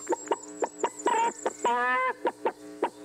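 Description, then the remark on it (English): A person imitates a chicken with a rapid, rhythmic run of loud clucks, broken by two longer, drawn-out squawking calls in the middle. “And your clucking makes it even more creepy.”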